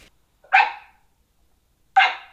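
animal, australian cattle dog barking

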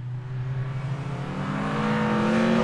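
vehicle, race car engines revving

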